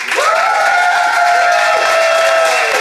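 The Laugh Out London studio audience votes by applause, bursting into loud, sustained applause: a dense wash of clapping mixed with cheering and a long whoop riding on top, steady from start to finish with no talking.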